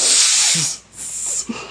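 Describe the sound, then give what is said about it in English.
A cat hisses sharply twice, a long breathy burst followed by a shorter one after a brief pause, fairly loud with no voices present. “Alright, this is a cat.”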